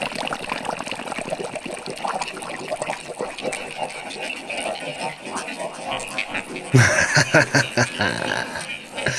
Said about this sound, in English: many of you said you like bubbles, I've got something for you. How do you like that? Bubbles in the bath, ladies and gentlemen, bubbles in the bath.